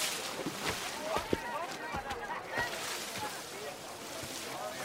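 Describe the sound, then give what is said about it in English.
Wooden boats pushed along by men standing in them, using long poles to balance and push forward, with irregular splashes and water swishing, soft knocks now and then, and faint voices in the background. “They're standing and using long poles to balance and to push their boats forward.”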